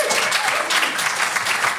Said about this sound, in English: Clap it out